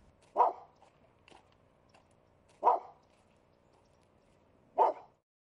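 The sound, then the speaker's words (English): A small dog, a lame, snaggle-toothed shih tzu named Molly, barks three times at steady, spaced intervals, with faint softer yips between the barks and no talking. “Today, it's a lame, snaggle-toothed shih tzu named Molly.”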